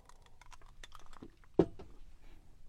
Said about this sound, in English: I can feel my throat getting a little itchy here, so I need to grab a little bit of water. So let me just get a drink here. Sorry if this is causing some ASMR into your ears.